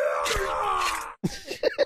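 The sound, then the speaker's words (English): A voice imitates a dragon as a sound effect for an attack hit in a game. It gives a long, rough, drawn-out growling roar that wavers in pitch for about a second, then breaks off into a few shorter guttural grunts and snarls. “Sound very dragony.”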